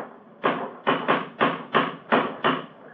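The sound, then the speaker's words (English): A cane strikes a stone bridge parapet about seven times in quick, steady succession, each knock hard with a brief ringing decay, and no voices. “It's a hard knock.”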